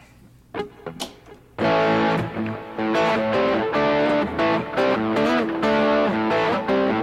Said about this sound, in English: Wampler head definitely gets that nice distortion. And then I think you can combine the two together for like a super. Almost too much distortion for this guitar,